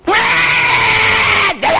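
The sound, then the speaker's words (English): A voice imitates a singer screaming: one loud, strained yell held for about a second and a half, then a brief break and the start of another shout. “And there's a guy singing. He's not singing, he's yelling.”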